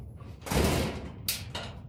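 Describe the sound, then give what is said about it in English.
A door slams shut with a heavy thud, followed by a couple of sharp metallic clacks as it latches and locks. No voices. “Well, that's us very definitely locked in now.”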